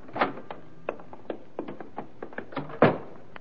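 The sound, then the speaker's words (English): A door is opened and shut: a run of short latch clicks and rattles, ending in a heavier thud as it closes. No one speaks. “Right through this door here.”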